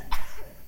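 A single short, sharp sneeze bursts out and fades quickly, followed by a low, quiet background with no talking.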